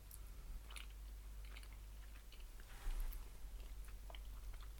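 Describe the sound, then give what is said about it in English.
Quiet chewing of a cookies and cream scroll, a soft pastry with chocolate biscuit bits on top and creamy vanilla icing, a few brief crisp bites scattered through steady mouth sounds, no talking. “I'm actually going to take a sip of water before I eat this.”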